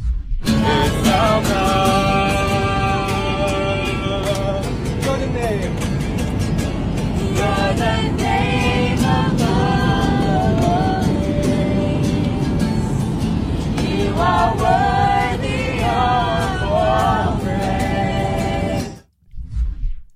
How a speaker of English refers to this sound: It's from Easter Sunday on an airplane at 30,000 feet. A group of Christian singers and a guitarist got up in the middle of an airplane and started playing modern worship music.